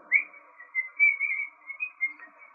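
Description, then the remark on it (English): A person whistles a bright, bouncy melody, a series of clear pitched notes rising and falling in a steady rhythm, moderately loud with no talking. “Is he whistling while he works? Yeah, he is.”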